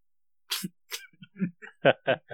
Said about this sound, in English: Like, it's really, there's a blockage back there. There's something back there. I'm coughing. There's stuff. I got to get this out. Pollen, stuff like that, whatever.